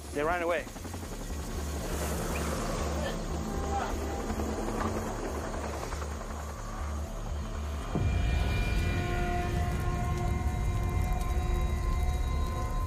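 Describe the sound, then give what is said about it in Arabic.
Helicopter rotors beating in a steady, rapid low thumping that continues throughout, with a deeper engine roar taking over in the second half and voices faintly mixed in; helicopters over a cocaine-making site with coca leaves. “سمعوا صوت المروحيات فهربوا.”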